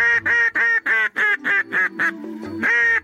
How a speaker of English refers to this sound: In the case of a duck call, you're really communicating with them when you blow these things. It's not just to attract their attention.